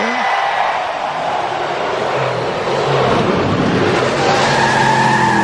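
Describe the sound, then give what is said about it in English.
Race car engines at Daytona International Speedway roar to life after the command to start engines and rev loudly, their pitch sweeping upward as the pack peels out, with tire squeal over a dense, continuous wall of engine noise. “Wow, then they all just peeled out, took off.”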